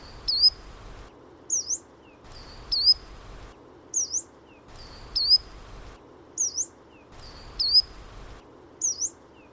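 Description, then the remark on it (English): Coal tit and yellow-browed warbler calls alternate four times each: a thin, high call over faint background hiss, then a sharper, rising-falling call after a short gap, clear. “So that was the yellow-browed warbler and coal tit.”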